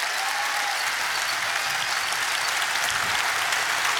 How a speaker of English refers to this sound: So we're blessed and honored today to be able to hear from Pastor Rob McCoy. And guys, would you put your hands together and welcome him to the platform, please.